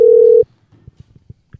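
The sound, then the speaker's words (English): A steady electronic phone ringing tone sounds loudly for under half a second, then cuts off, followed by a few soft, low thumps and clicks in near-silence. “Is it ringing?”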